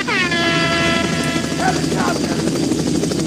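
A loud helicopter roars close overhead, its rotor chop thudding steadily beneath a high engine whine that bends downward in pitch as it passes, with a brief vocal sound partway through.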